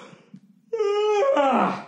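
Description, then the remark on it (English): A loud, drawn-out vocal yawn rises into a steady, moaning tone and then slides downward in pitch before fading, lasting over a second after a brief quiet start. “LegalZoom, these yawns have nothing to do with you.”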